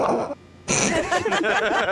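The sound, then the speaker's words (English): A voice imitates a box of dirt sneezing: a short breathy lead-in, a brief pause, then a loud, noisy burst that trails off into voiced, sputtering sounds. “Did that box of dirt just sneeze?”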